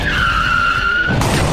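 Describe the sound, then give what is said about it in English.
A car's tires skid with a loud, sustained high-pitched squeal over rumbling engine noise at the Hell Dome's annual Mother's Day Car Crash-a-palooza, then the squeal cuts off into a broad, noisy roar near the end. “It's the 185 millionth annual Mother's Day Car Crash-a-palooza.”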